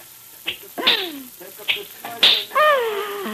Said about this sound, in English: I love to hear that sound. And when you crack your whip like that tonight in the center ring, Rosa the equestrian, the daring rider, will die.